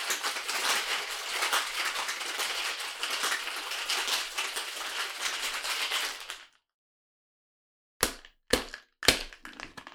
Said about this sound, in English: All right, so we've clearly now shake it with ice after dry shaking it. Also, don't like the dry shake. Gotta dry shake.